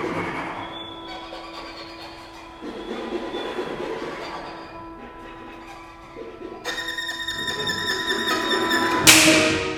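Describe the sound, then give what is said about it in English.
Sustained, droning instrumental music swells and grows louder, then ends with a single sharp, loud whip crack that snaps out right at the close. “Nice period at the end of the sentence there. Whip crack.”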